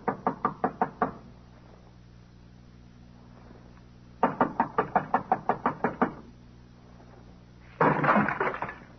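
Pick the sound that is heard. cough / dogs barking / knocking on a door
knocking on a door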